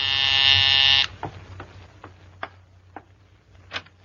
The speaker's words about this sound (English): Take such an ordinary little thing as the ringing of a doorbell. Simple enough, only the doorbell of a small apartment in Upper Manhattan, that's all.